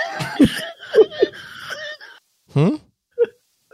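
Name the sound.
cough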